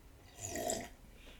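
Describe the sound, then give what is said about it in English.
A single short slurp of someone sipping water from a glass, a soft wet swallow lasting under half a second against a quiet background, with no talking. “Let me just have a sip of this here water.”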